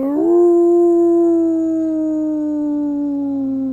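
A large, larger-than-human humanoid creature on the center fountain in the square of Bledson lets out one long, loud howl toward the moon, swelling quickly and then holding a steady, slowly sinking tone for several seconds. It stands alone, with no talking.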